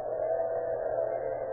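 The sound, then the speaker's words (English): A steady, continuous high whine from an electric grill in a small office at the Sun Mercantile Company, 616 South 7th Avenue, at 2:30 in the morning. It drones on at an even loudness without breaks, a sustained tonal hum with no voices over it. “In a small office located in the Sun Mercantile Company at 616 South 7th Avenue, two men converse in low tones, listen to the high whine of an electric grill.”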